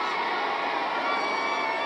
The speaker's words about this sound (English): Okay, they're all cheering. Okay, they're all cheering. Now they're cheering because he recovered.